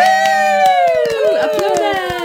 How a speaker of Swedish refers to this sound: Applåder.